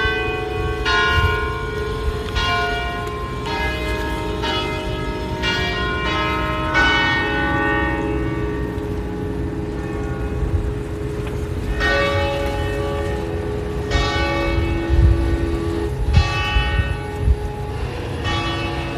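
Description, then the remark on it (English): Church bells peal repeatedly in Venice in an overlapping, irregular rhythm, each strike ringing out with long resonant harmonics over a steady low rumble of background noise, fairly loud and continuous throughout. “And I'm going to send you some sounds from Venice, including these bells.”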